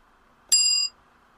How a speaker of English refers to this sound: Right? Yeah, I found a bell.